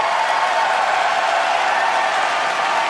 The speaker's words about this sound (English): He's just kind of choking up, so they're all clapping. They're giving him the power to push through.